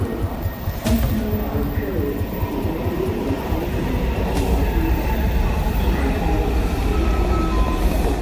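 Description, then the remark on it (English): Steady low rumble of a subway train in motion, with rattling and faint rhythmic clatter from the wheels throughout, heard from inside the car at a constant, fairly loud level, on a daily morning commute from the suburbs of Washington, D.C. to a city office. “Then the subway.”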